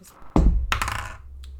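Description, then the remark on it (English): Dice rolled for insight checks in a tabletop role-playing game hit a hard tabletop with a solid thud, then clatter and rattle briefly before settling, ending with one last light click. Moderately loud, with no voices. “Why are my dice all the way over there?”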